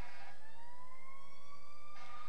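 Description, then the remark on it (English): A fire truck siren wails steadily as it passes, about the tenth fire truck to go by, its tone sliding slowly downward. The sound is fairly loud and continuous, with no talking over it. “That's like the 10th fire truck that's going.”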